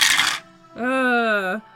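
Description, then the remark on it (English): A brief, bright clatter of dice tumbling across a table as a player rolls again with the correct dice, followed by a sustained voiced exclamation from a person. “Ooh, roll with the correct dice.”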